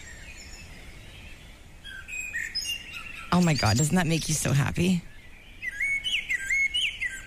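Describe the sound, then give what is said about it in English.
Several birds chirp and trill in high, bright bursts throughout, outside a front door on a spring morning, with a woman's excited voice speaking over them briefly in the middle before the birdsong continues alone. “At this time of year, I recorded this morning. This is what I hear when I step outside my door.”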